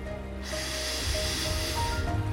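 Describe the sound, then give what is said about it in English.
A whale blows a giant puff of air to push a little boat back up the river: one loud, breathy whoosh that rushes out for nearly two seconds over a low rumble, then fades. No one speaks. “And with one giant puff,”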